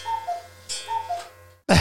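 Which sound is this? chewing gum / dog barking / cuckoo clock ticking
cuckoo clock ticking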